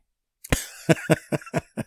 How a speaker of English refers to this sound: And he has his propensity to cough during his podcast sometime, but still not edit it out because I ain't editing out shit.